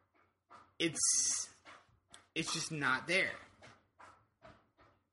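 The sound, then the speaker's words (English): A dog laps water noisily, with wet slurping splashes that come in short bursts while a person talks over it. “Your dog drinks really loudly.”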